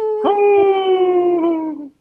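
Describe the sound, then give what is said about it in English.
A person howls like a wolf for Howling for Wolves, a group protecting wolves: a single loud, sustained wail that holds steady and then slowly sinks in pitch before fading out after about two seconds, with no talking. “You were thinking it hard that you were going to howl.”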